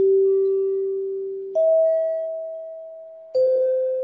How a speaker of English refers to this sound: The NBC chimes were born. So at the end of the program, they would signal all the stations to identify themselves after playing this.